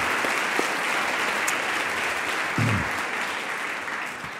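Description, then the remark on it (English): A crowd applauds steadily, a dense wash of many hands clapping at once that stays loud and even throughout, with a few brief louder bumps along the way. The audience is applauding the builders who made the building. “So let's give a round of applause for the builders who made this place.”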